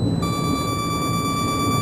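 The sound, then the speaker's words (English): An electronic 1% low fuel warning sounds in a descending craft, a steady high-pitched tone that starts a moment in and holds over the craft's continuous low engine rumble, with no voices. “1% fuel warning gone.”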